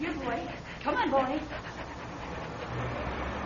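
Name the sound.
dog panting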